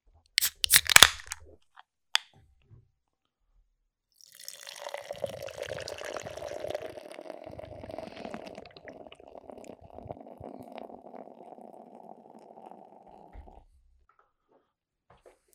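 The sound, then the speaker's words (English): A bottle of Kaiser beer cracks open with a sharp hiss and clink, then after a short pause the beer pours steadily and gurgles into mugs for about nine seconds, clear with no talking. “Let's crack this open and pour this motherfucker out.”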